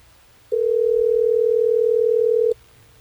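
A single steady telephone tone hums for about two seconds, clear, as the hosts of the radio station Hot 101.5 place a call to a listener, with quiet background noise before and after and no talking.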